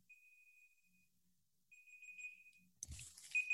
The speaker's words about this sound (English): You're beeping. I do. From your end. It sounds like someone's like trying to find their phone.